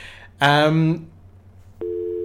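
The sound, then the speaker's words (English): A loud, buzzy electronic tone bursts out for about half a second, then after a brief lull a steady, flat telephone-line tone starts and holds as an old dial-up modem begins to connect. “You know how it was me to find an old school dial-up modem?”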